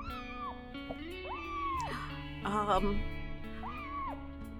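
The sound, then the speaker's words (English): A small cat meows three times from inside a bag in short, rising-and-falling cries, moderately loud, over a steady tonal hum in the background. “You hear a small meowing sound coming from his bag.”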